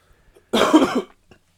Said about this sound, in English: Sorry. For the 1,000th cough of the evening.